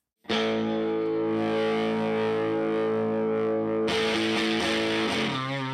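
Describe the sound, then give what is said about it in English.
A heavily overdriven electric guitar, played with its volume all the way up through a Teisco boost pedal turned all the way up, rings out a sustained, thick distorted chord, then shifts into busier, brighter picked notes near the end, loud and saturated throughout with no talking. “Then I'm going to dime this boost pedal.”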